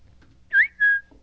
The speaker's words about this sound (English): So she whistles a lot too, by the way.